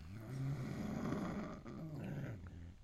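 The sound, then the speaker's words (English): A dog, Don, growls low and rumbling, a continuous throaty sound with slight pulsing that could almost pass for snoring, with no one talking over it. “I'm not sure whether Don is growling or snoring. It could be either.”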